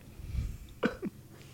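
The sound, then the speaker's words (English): A short burp: a low rumble, then an abrupt voiced belch followed a moment later by a smaller second gulp, with no talking around it. “Burp. Man, I almost threw that up.”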